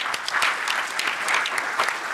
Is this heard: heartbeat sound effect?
no